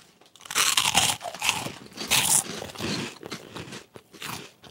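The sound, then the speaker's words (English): Loud crunching as someone bites into and chews a crisp, hand-shaped pickled snack similar to Funyuns, with several irregular crackly bursts and no talking. “Do you want to hear the crunch?”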